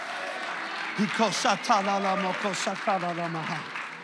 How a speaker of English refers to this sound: Oh, I wish you'd clap your hands and shout unto God.